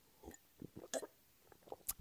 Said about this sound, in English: Now hold on while I get a sip of this water.